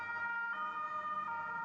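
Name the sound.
police siren sound effect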